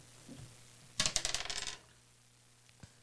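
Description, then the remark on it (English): Dice rolled on a hard surface, a quick burst of bright clattering clicks that bounce and settle within about a second, followed by a faint single tap against a quiet background hum. “Go ahead and roll the dice.”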